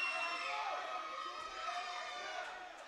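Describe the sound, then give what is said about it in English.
A large wrestling crowd cheers and hollers during a match between George South and Axel Jaggers in a steady, dense roar, loud and sustained throughout with no clear individual voices standing out. “Uh-oh, Max Carnage is not liking the crowd response to this.”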